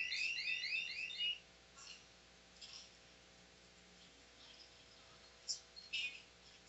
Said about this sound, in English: Damn, that shit is loud. Definitely a good alarm clock.